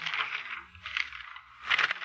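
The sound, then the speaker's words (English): Pages of a thick telephone book flipping in three quick papery rustling bursts as someone looks up a phone number, fairly clear, with short pauses between them and no talking. “The telephone book. Listen, Mr. Avery. The sound of the flipping pages.”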